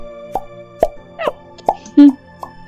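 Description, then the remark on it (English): A string of about six soft, bubbly plops at irregular intervals, each short and slightly pitched, with the fifth one lower and louder, over a faint steady tonal hum, as a dragon turns into light pink magical bubbles. “In a blinding flash of light, the dragon turns into light pink bubbles that...”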